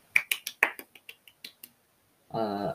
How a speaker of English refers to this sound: If I'm honest, he had an absolutely brilliant race, and I just want to stop and give him a round of applause.